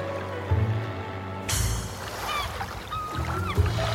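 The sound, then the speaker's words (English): A hop-on, hop-off tour boat's engine drones low and steady while water rushes and sloshes alongside, swelling suddenly partway through, with faint bird calls chirping above the wash. “Welcome, one and all, to the world's finest hop-on, hop-off boat tour.”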